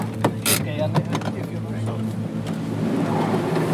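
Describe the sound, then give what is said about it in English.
A car's engine drones steadily and low as it drives down a tunnel incline, with a few brief knocks and rattles early on and an enclosed, rumbling echo throughout. “We eventually arrived at the storage level and got out of the car.”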